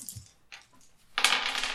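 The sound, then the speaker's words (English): Dice clatter onto a table, a few quick clicks followed by a brighter rattling tumble that settles after a moment, fairly loud with no voices. “I'll go for a different dice for now.”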